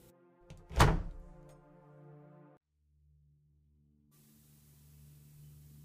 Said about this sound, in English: Wendy left my office a bit brighter as the door closed behind her